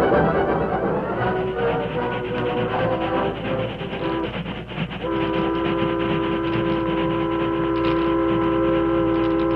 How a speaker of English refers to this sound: You notice that, Kirby? That was a supply train.